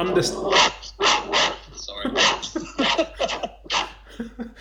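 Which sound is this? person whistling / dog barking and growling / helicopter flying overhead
dog barking and growling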